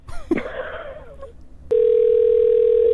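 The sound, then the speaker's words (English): After a moment of faint, muffled voice and line noise, a steady electronic phone tone abruptly starts and holds unbroken and loud, like an outgoing call beginning to ring, as a new number is being called. “3, 2, 1, we're calling. You're going to hear the rings.”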